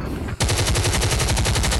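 A loud, sustained burst of automatic gunfire erupts after a brief low rumble, the shots rattling off in a rapid, steady rhythm until the end.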